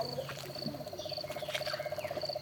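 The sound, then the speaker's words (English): A frog calls from sugarcane beside rainforest in the early evening with a rapid, steady pulsing trill that runs through the whole moment, with high insect chirps and faint bird notes in the background. No one speaks. “I think I can hear a frog.”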